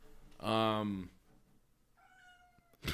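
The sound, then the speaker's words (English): A cat with its face pushed under a door lets out one loud, drawn-out yowl, then a quieter, thinner cry about a second later, ending with a brief sharp noise. “He's sticking his whole face under the door and just yelling.”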